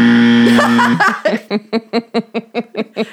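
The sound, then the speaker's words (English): A loud, flat buzzer tone sounds for about a second, then breaks into a run of rapid, rhythmic chuckling bursts that carry on to the end. “She should get a buzzer for destroying books.”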